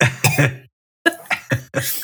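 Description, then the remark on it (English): A voice imitates a small child's cough: a few short, raspy hacks, then a brief pause and several more quick coughs in an uneven rhythm, fairly loud. “I could do the little kid cough.”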